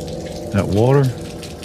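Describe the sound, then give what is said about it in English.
Water runs steadily throughout, like a faucet left on, while a short voiced sound with a rising-then-falling pitch briefly rises over it in the middle. “That water? It's wet.”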